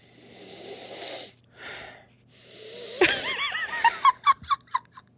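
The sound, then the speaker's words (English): A long, forceful sniff with a hollow breathiness as someone sticks their nose into a cup to smell its contents, then a shorter second inhale, followed by a burst of giggling laughter in quick rhythmic pulses. “The force behind the sniff.”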